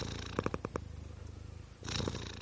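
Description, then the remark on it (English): A cat purrs in a steady, rumbling drone, with a few soft rustles and breathy bursts layered over the continuous low vibration. No one speaks. “I'm going to miss his stripey face in the morning. And his purr.”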